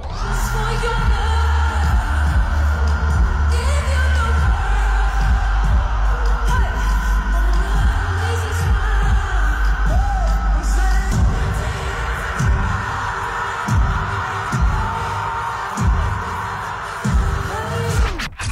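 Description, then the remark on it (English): A loud crowd at the Coachella festival screams and cheers as a guest singer joins the stage, over booming, throbbing bass, with shrill whoops and yells rising above a dense, constant roar for the whole stretch. “Have a listen to the crowd losing their minds.”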